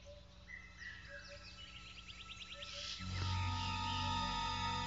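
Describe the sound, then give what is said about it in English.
Bird chirps and whistles over a wild background give way to a vervet monkey's eagle alarm call, signalling danger from the air: a loud, harsh, sustained call that breaks in about midway and carries on to the end. “A call that means danger from the air.”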